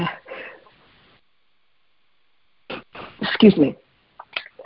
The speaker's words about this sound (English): I have a little tickle there. I had a couple sneezes. I'm sorry.